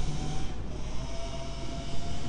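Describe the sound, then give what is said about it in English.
A motorbike drones past, its engine a steady, rough mechanical hum with a faint whine, fairly loud and continuous for a couple of seconds, with no voices over it. “like waiting for the motorbike to pass, for these initial sensations or bubblings, these very present feelings and experiences to settle down.”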